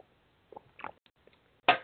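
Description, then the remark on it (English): Quiet mouth and liquid sounds as someone sips water: a few soft slurping sips and a swallow, ending in a brief louder breathy gulp or exhale. No one speaks. “Speaking of which, I'm going to take a sip.”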